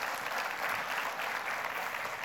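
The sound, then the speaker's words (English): An audience applauds steadily to honour a guest present that morning, a dense wash of many hands clapping at once, fairly loud and sustained without pause for a couple of seconds. “Yeah, you can clap.”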